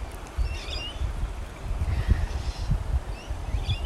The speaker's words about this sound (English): And as I wrap up this podcast, my favorite trees behind me are whistling in the wind and cheering me on.